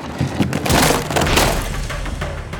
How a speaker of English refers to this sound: Kono went pale as the screen tore and the frame snapped.